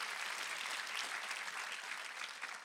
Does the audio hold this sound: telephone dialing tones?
no